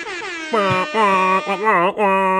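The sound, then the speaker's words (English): A voice imitates an air horn with a loud, sustained, buzzy blare, broken into a few wavering blasts over about two seconds. “Can we insert like an air horn here?”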